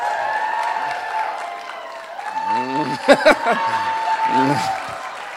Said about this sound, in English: Come on, women, you need to, come on. Husbands, I want a big cheer from the women here. I'm giving you a shout out today.